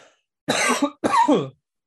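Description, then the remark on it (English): Two loud coughs in quick succession, each a harsh, raspy burst lasting about half a second, with a brief pause between them and silence afterward. “sorry, I have to cough one sec.”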